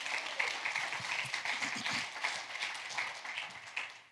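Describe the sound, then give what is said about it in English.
A church audience applauds itself for coming to church that morning: many hands clapping in a dense, continuous wash of sound that holds at an even level for about four seconds, with faint voices mixed underneath. “Let's applaud yourself for coming to church this morning.”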